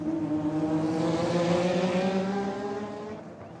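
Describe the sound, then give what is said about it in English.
Loud race car engines roar continuously with a high, strained whine that shifts in pitch, then fade slightly as they pass. No voices. “Instead of musicians, now I was capturing the sound of car racing, tennis, baseball, football, whatever they sent my way.”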